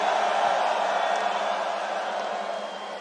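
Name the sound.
crowd screaming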